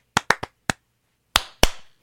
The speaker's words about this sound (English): Do you want to clap? Yeah.